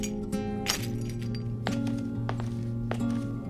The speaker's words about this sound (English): Your camera! It's the only thing I could use to break the display glass safely.